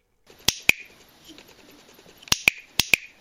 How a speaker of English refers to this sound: It was a simple little toy known as a cricket clicker. If they heard something close by in the darkness, they were to click the cricket once. It was to be answered by two clicks.